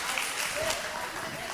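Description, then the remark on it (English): A crowd applauding steadily, a dense, even wash of many hands clapping at once, holding at a constant loudness throughout with faint voices mixed in beneath it. “Round of applause.”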